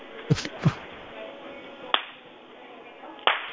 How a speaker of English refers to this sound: Hey, I got an idea. Start clapping your hands and walking around the dining room, and I'll tell you when you're getting warmer. Okay. Clap loudly.